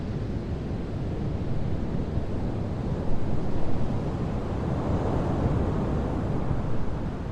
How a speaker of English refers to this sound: I drove down to the beach, Skógafjara, where the river flows into the Atlantic Ocean, which has been hitting the black sand coastline, made up of volcanic ash, since time immemorial.